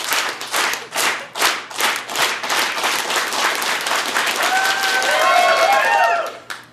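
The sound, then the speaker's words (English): An audience begins a slow, steady clap of evenly spaced loud claps that quickly speeds up into dense applause, with whoops and cheering voices rising over it near the end. “Can we start a slow clap”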